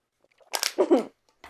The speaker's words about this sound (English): Don't crush the Pepsi. Don't crush the Pepsi. Crush it. Crush it.